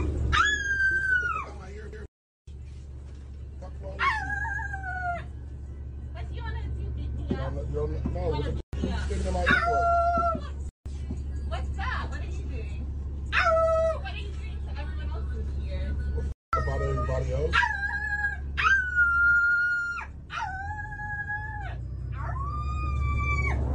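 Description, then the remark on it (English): An Asian woman imitates a dog aboard San Francisco's Muni transit, letting out repeated yelping barks and long, wavering howls at a man. Her voice is loud over a steady low rumble. “So as you saw there, she was barking like a dog at a black man on what they call the Muni, which is their transportation system, due to him not wearing his headphones.”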